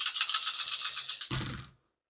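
A handful of dice, rolled for a stealth check in a tabletop game, rattles steadily with a bright clicking shake, then spills out in a short, heavier clatter before falling silent. No one speaks.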